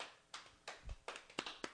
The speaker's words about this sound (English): We're all doing hand-on-leg claps, one-handed hand-on-leg claps.